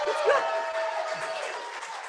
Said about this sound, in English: Let's make some noise, Hudson Valley. Woo! I feel a little jealousy when the teens come up. Man, they get a round of applause and all kinds of, come on.